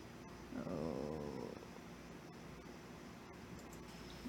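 A dog lets out a short, wavering growl mixed with a whimper, lasting about a second, followed by a steady low background hum with a few faint clicks.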